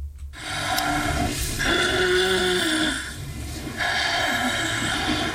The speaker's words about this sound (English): Obstructive sleep apnea may sound like snoring, but it can also sound like a car crash.